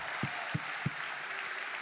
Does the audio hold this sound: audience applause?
yes